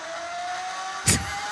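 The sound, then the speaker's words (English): A Ferrari 458 engine drones at a steady, high rev on a dyno, then lets out a short, loud burst near the end. No one speaks. “No, I'm just listening to a 458 engine on a dyno.”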